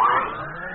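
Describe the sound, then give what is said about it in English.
A motor whirs into action, a steady droning hum with a whining mid-pitched tone that eases slightly lower, loud and continuous with no voices. “Well, let's get started. Motor, on.”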